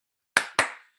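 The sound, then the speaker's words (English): Two sharp hand claps in quick succession to turn the lights out, crisp, each with a short ringing decay, followed by silence. No voices. “Do a little clap and lights is out, man, and there you go.”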